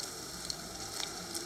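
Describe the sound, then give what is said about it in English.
Steady, quiet rain hisses outside with a soft, even wash of noise, broken by a few faint drips and ticks. No voices are heard. “But it's raining outside.”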